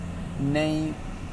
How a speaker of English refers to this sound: It probably sounds like I'm in an aeroplane right now because the air conditioning is up really high.